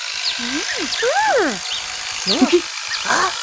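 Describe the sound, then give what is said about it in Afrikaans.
A motorised saw cutting down trees in a plantation whines in several short bursts, its pitch climbing and dropping with each rev over a steady hiss, the revs loudest near the middle and end. “Die mense is besig om die bome af te saag.”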